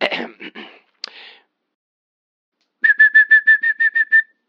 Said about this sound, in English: Next, the yellow-tailed black cuckoo from Australia, whose song can range from soothing to rather eerie.